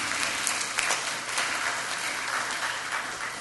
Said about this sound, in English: Yes, you can clap for her.